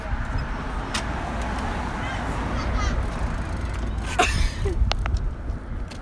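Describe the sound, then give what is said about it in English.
A bus rumbles past on a street, a steady heavy engine drone with a few sharp clicks and clatters on top, and faint voices in the background. “Watch out, there's a bus.”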